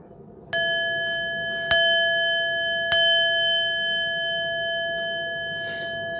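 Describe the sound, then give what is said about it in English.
A bell is struck three times at roughly one-second intervals, each clear metallic strike ringing on with a long, sustained tone. It is fairly loud, with no one talking. “When you start doing that with the bell, hey, you had me singing, you can ring my bell.”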